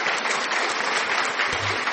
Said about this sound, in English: A round of applause. Welcome up.